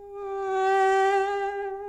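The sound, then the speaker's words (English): A voice imitates a mosquito with a steady, nasal, high-pitched buzzing whine, held without a break for about two seconds, swelling slightly in the middle. No talking. “Because if you're really annoying on the internet, you know, that's like being a fly or being a mosquito.”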